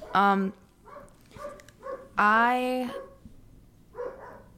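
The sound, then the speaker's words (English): A female dog lets out two loud, drawn-out barks a couple of seconds apart, with quieter voices murmuring in between. “The dog keeps it organic. The dog is like, she's so real.”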